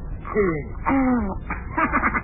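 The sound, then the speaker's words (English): A dog named Bunny yawns with a squeaky, whining vocal sound: two drawn-out tones that slide downward in pitch, followed by a breathy, gravelly exhale. “Look at him yawn.”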